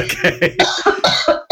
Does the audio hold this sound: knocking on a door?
no